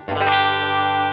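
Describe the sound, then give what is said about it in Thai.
A single clean electric guitar chord, played through an amplifier with reverb, strums once and rings out with a washy reverb, sustaining evenly at moderate volume with no voices over it. “อันนี้เสียงคลีนแบบมีรีเวิร์บ”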